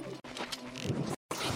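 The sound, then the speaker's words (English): A video game fire arrow whooshes off and strikes, followed by a noisy, crackling burst of flame, loud, broken by a couple of brief silent dropouts. “Chris, you don't need to equip the fire arrow. That's a little aggressive.”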